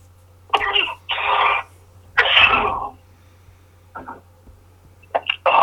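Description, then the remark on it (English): A harsh coughing fit: several loud, raspy bursts in quick succession, then a couple of softer, shorter coughs trailing off, with a low steady hum in the background. “Sorry for the cough.”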